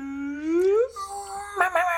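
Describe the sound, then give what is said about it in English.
A voice imitates a police siren, a loud rising wail that sweeps upward in pitch, then breaks into a few wavering, warbling tones. There are no words, only the vocal siren sound. “That's what the sirens sound like in somewhere.”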